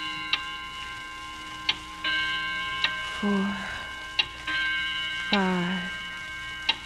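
A clock ticks slowly and steadily, crisp clicks spaced more than a second apart, over a sustained humming tone and a couple of brief sliding, voice-like sounds.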